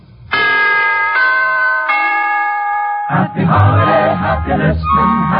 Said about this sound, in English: To put it in musical form, here is a holiday wish from the NBC Chimes.